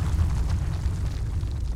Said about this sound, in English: Suddenly, there was a massive earthquake, and the prison was shaken to its foundations.